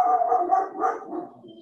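A dog named Reagan, a female, gives a drawn-out, wavering howl mixed with rough barking yelps, fairly loud, lasting under two seconds with no one talking over it.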